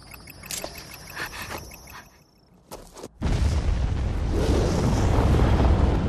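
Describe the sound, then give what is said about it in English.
A few faint clicks and rustles give way to a sudden big explosion, which swells into a loud, sustained rumbling roar that continues to the end. “That looks a big explosion.”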